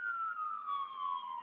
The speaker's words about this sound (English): No, it's an ambulance.